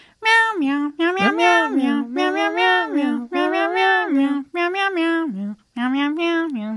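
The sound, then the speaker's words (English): People sing the Game of Thrones theme entirely in drawn-out cat-like meows, voices imitating cats in a string of rhythmic phrases with brief pauses, loud. “Let's leave them with a little Game of Thrones meowing.”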